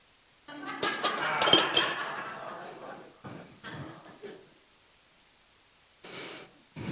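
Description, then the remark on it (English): A paper hole punch clunks and crunches in a dense, rattling burst lasting a couple of seconds, followed by a few shorter clicks and scrapes, then a brief rustle at the end. “And I have this paper punch handy so I can show my holiness.”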